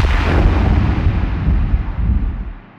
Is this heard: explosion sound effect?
yes